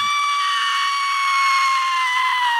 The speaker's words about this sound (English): That scream was not the high-pitched scream of a young girl. It sounded like a scream that someone my mother's age would make, and it sounded like the woman was standing directly to the right of